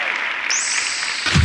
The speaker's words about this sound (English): So clap it out for these two.